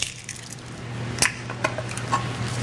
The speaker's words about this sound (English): Yeah, one of the things Barbara Nitke points out also on a show like Giada is that the sound, the incredibly over-miked sound, you can hear this kind of the clicks and the snaps and the little crunchy edges of things.